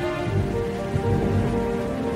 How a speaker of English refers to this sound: Another sad night, as he sat there thinking, a big storm began. Lightning was striking and the sound of the thunder was echoing in the castle.